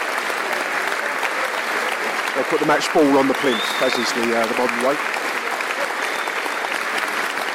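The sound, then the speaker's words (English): Steady, dense applause from a large crowd all around Carrow Road Stadium fills the whole clip, a constant wash of clapping. A man's voice talks briefly over it in the middle. “Excellent applause around Carrow Road Stadium”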